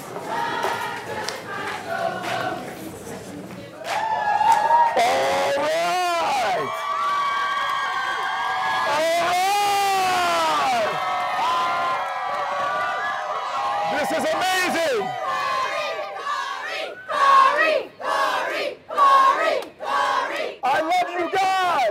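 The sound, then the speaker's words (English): A crowd of about 50 people outside cheers and yells a person's name loudly and continuously, with overlapping shouts that break into rhythmic, chant-like bursts toward the end. “You have about 50 people outside. Okay. Cheering your name.”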